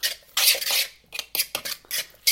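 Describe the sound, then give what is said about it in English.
A utensil scrapes and stirs through thick, mushy guacamole in a bowl, making a series of wet rasping strokes in an uneven rhythm, with no one talking. “I pretty much have my guac mixed.”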